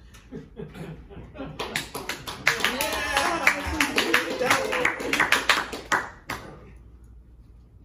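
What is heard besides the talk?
audience clapping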